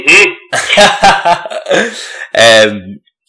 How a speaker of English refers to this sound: water went down the wrong way. Don't cough on the mic. I'm fine.